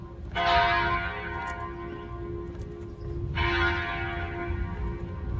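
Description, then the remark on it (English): A large church bell near downtown Phoenix tolls twice, each strike ringing out with a long, resonant hum that slowly fades, heard outdoors over low background rumble. “Let's go get this bell, shall we?”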